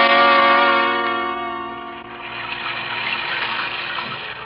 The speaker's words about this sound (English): I was in the 2x4 dressing room changing into my street clothes. It was raining, beating down on the low skylight like a fury. It made such a racket that I didn't hear a thing.